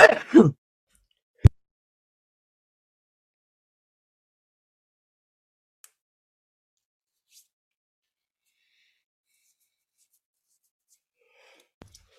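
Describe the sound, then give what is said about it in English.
A single short sneeze bursts out at the start, followed by a sharp click and then long near-silence with a few faint ticks. “Excuse me, I have a case of sniffles right now.”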